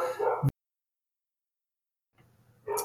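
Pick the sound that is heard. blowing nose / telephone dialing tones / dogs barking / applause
dogs barking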